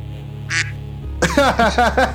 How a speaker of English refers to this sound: What was that? Oh, I don't know. Does it sound like a duck? It's free with the Discord soundboard. Oh, can you do it again?